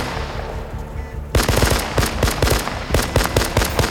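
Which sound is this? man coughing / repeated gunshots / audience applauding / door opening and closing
repeated gunshots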